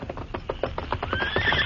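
The Lone Ranger's horse Silver comes out of the underbrush in answer to a whistle: hooves clip-clop in a quick, steady rhythm, drawing closer, then a high, rising whinny rings out over the last hoofbeats. No one speaks.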